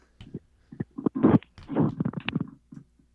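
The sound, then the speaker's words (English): Irregular rustling and shuffling noise on a caller's phone line during a live call-in show, coming in uneven bursts of crackly, muffled handling sounds for about three seconds, with no one speaking. “Okay, who's making all that noise, that rustling around?”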